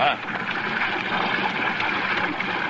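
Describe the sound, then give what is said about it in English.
A swollen, flooded river rushes past in a steady, continuous roar, the churning water loud with no breaks for the whole stretch. “Breaking off and falling into the water all along the side.”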